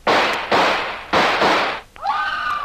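A revolver fires four loud, sharp shots in two quick pairs, each bang ringing out briefly, then a high, wavering scream rises and holds at the end.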